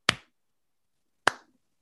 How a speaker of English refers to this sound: He almost doesn't react. Then he just starts clapping.